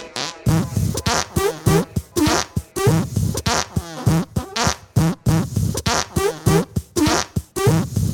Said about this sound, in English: Yeah, he's a very jealous man. He's a wrestler. He drinks beer, sits around all day, farts.